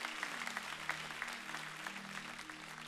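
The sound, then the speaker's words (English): An audience claps steadily together, a dense wash of many hands with some individual claps standing out, over a low sustained organ-like hum. It is continuous, with no talking; they clap to thank God for his cleansing power. “Come on, clap your hands and thank God today for a cleansing power.”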